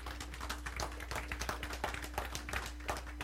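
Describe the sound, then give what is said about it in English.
An audience claps steadily for a few seconds, many hands blending into a dense, crackling patter with no voices over it, fairly soft overall beneath a low steady hum. “Don't clap, because a lot of you don't live like this.”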